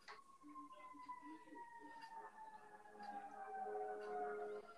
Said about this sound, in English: The fire sirens are not helping my argument at all.